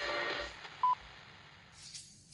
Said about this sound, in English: The phone is out. That's the second time it's gone off.